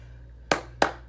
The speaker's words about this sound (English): I have to applaud us. I cannot wait until we get the audio clap sound so that it won't sound so dissonant, but until then, we have to just applaud.